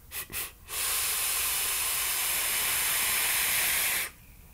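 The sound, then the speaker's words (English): A long vape hit from a Kanger e-cigarette with banana bakery e-juice: two quick airy puffs, then a steady, breathy hiss lasting about three seconds before stopping abruptly. No one speaks. “Let me have a toot here.”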